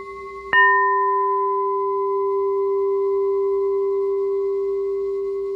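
A crystal singing bowl, played for throat chakra frequency healing, is struck once, then rings on as a pure, steady tone with a few clear overtones, sustaining loudly and evenly for several seconds with only a slight fade.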